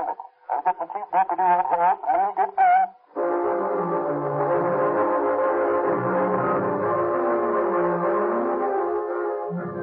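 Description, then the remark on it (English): A train horn blares in one long, steady, loud blast over a low rumbling undertone, preceded by a few seconds of short, choppy tonal bursts, as a train climbs through the Cajon Pass. “As the three Los Angeles detectives climb through the Cajon Pass aboard one train, Sheriff Mahoney and his deputy rumble across the desert on another.”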